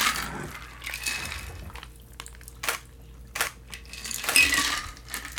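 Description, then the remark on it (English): A bourbon and Cointreau cocktail is poured into a sugar-rimmed glass, with bright clinks of ice and glass and short splashy bursts, fairly quiet, with no one speaking. “Into a sugar-rimmed glass.”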